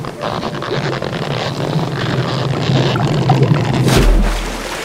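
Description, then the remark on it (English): Gentle sea waves wash and lap steadily, with a low rumble underneath, then a sharper splash near the end as a coconut shell is lowered toward the gently breaking waves and touches the water. No one speaks. “lowered the coconut shell toward the gently breaking waves. And the moment the shell touched the water...”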